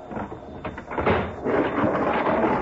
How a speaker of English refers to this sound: As they break the seal on the freight car, other men tear open the door of the car ahead.